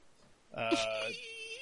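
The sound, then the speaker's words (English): A single voice imitates a 10-year-old child who has fallen bursting into tears: a sudden loud, quavering wail that starts after a short quiet moment and trails off into a lower, drawn-out moan. “I just start crying.”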